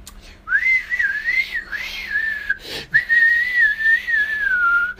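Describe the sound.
A person whistles to imitate a man aggressively playing the flute, a wavering, mid-pitched melodic line in two long runs split by a quick breath, fairly loud and without any talking.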